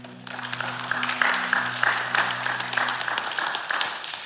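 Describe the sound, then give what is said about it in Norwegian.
An audience applauds steadily for worship singers, a dense crackle of many hands clapping, with a sustained low organ-like tone held underneath for the first few seconds. “Vet du hva, du kan få lov til å gi en applaus til låsangerne.”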